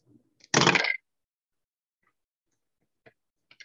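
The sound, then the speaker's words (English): A sharp, loud clattering burst as a knocked-over die is rerolled across a hard table, followed by a few faint, scattered clicks trailing off afterward. “I knocked that die over, so I'm just going to reroll.”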